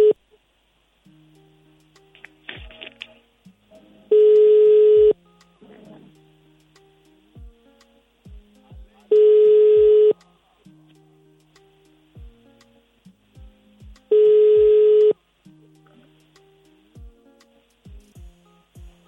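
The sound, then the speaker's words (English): A phone ringback tone sounds three times at steady intervals, each ring loud and about a second long, with nobody picking up; faint clicks and low hum fill the gaps. “The number you called has not answered. Please call back later.”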